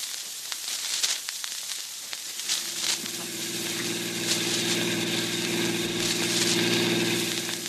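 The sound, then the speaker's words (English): After a couple of seconds of hissy noise, the engine of a car being driven kicks in and runs with a steady, low droning hum that slowly grows a little louder. No one speaks. “Oh, for the life of me, Dick, I can't see why I always have to drive the car.”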